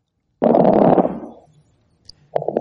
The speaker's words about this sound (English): So, let's compare that to fine crackles.